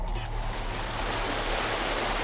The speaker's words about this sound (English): Her husband walks forward to join her, and together, they stare at the rolling waves.